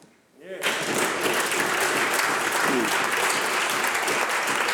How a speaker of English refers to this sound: You know, the minister can stand up and all her colleagues can clap.